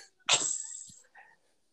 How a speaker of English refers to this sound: No, hopefully I will not be coughing throughout this entire episode. Or clearing your throat. Right. I apologize. I've been sick for the past week.